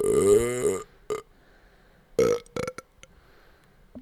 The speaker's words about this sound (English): What was that? It was a belch. That was not a belch. Well, then what was it? I don't know. That's why I asked you.